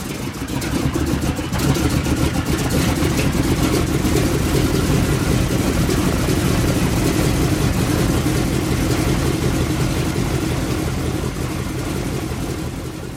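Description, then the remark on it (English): The heavy piston engines of American bombers rumble as they start and the aircraft begin to move off for takeoff, a deep, steady droning roar that stays loud and continuous throughout, with no voices over it. “So engines would start and they would begin to move off and start takeoff.”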